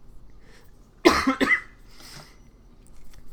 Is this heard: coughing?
yes